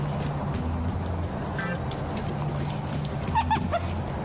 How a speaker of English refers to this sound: They're known as barking deer, but that isn't barking. I've never heard anything like that. They are controversial because they spread all over the country. They started to escape in the mid-20th century and they've spread everywhere.